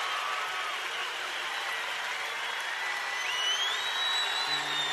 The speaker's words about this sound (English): I like the fidelity of this. I can hear all the claps. Yeah, I think this is like a board recording, as they say.